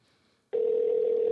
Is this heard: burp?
no